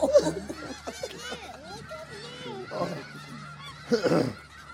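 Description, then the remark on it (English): A cluster of geese honk loudly, their nasal calls overlapping in quick, uneven bursts, with a stronger squawking flurry near the end and faint laughter-like sounds in between, played back from a meme. “Look at all those chickens.”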